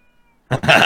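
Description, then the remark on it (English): A cat locked in a bedroom lets out one loud, drawn-out, slightly bleating meow after a brief near-silent moment, with no talking around it. “She's Oh. meowing now because she's locked in my room.”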